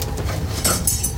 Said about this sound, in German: Es ist am Gürtel des Ordnungsmagiers ein Schlüsselbund, ähnlich wie der hier.